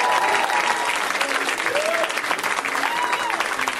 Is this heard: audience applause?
yes